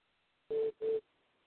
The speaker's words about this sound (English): Did you hear that beeping sound again? I guess the fucking DEA is fucking recording this show, too. Yeah, I can hear it. Yeah. Started. Normally that's NSA or whoever fucking chiming in.